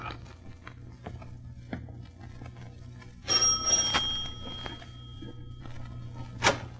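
A doorbell at the front door of 27 Ludwigstrasse rings once with a bright, high metallic chime that hangs and slowly fades over about two seconds, after a few soft, evenly spaced taps like footsteps. No one speaks.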